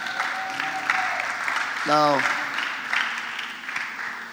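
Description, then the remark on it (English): An audience claps in a steady, dense patter of many hands throughout, with a single spoken word from one voice briefly rising over the applause midway. “Are you clapping?”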